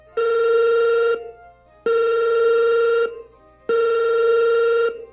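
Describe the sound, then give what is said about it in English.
A telephone jangles three times in a quiet house, in a steady repeating pattern, each bright, harsh electronic burst lasting about a second with short pauses between, loud, with no one talking. “The house was sublimely quiet when the phone jangled with grating intensity.”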